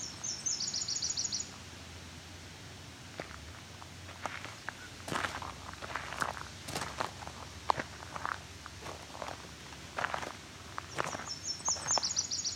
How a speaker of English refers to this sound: The myrtle warbler's a little softer and cleaner, and this bird seems to be kind of in between. It may just be because I can't hear the extra complications in the warble.